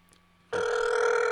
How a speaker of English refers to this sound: I'm not going to answer the phone. Oh, we know she's not going to answer the phone, but. Not going to answer the phone. Nope. She's not going to answer.